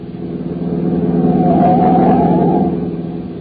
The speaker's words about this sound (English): Oh, I say, sir, there's a car coming up behind us like fury." "Oh, yes, I see him in the mirror. I'll get him plenty of room to pass.